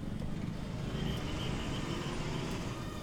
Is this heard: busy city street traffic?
yes